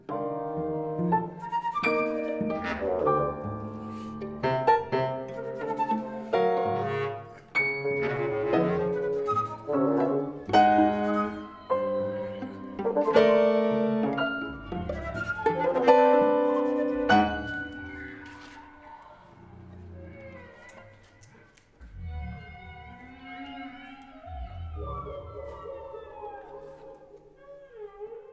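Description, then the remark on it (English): Long, sliding tonal cries of whale song played from tape rise and fall over a sustained musical texture, loud and layered at first, then thinning to sparser, softer calls toward the end. “And I like the tape sounds of those really beautiful whale sounds, and it's very evocative of that northwest coast of Donegal.”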